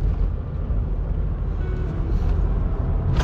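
A steady rumble of a car weaving in and out of traffic on a road, with continuous low engine and tyre noise and a brief hiss of passing traffic near the end.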